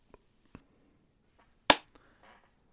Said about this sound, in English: You get a slow clap for that one.